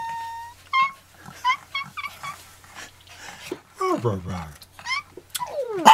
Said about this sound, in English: That's some good barking right there, a little sparky.